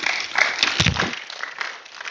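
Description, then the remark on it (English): An audience at a church service claps together for a man asked to stand up at the front, a dense, steady burst of applause that holds at a moderate level for about two seconds, with no voices over it. “Y'all give Elisha a hand clap.”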